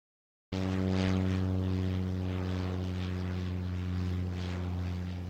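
A small propeller plane's engine at the tiny Kokoda airstrip drones loudly and steadily, a continuous buzzing hum with a strong low pitch that starts abruptly after a brief silence and holds for several seconds.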